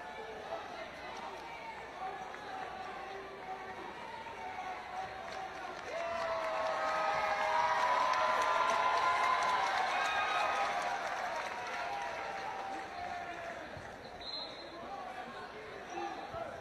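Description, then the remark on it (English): Arena crowd noise at a basketball game with applause swelling up about a third of the way in, holding steady and broad, then easing slightly while the crowd keeps murmuring in the background. “nice when you got a round of applause for every job to be done.”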